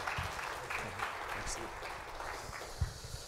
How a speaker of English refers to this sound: If you would, welcome him with a big round of applause as he comes to speak for us this morning.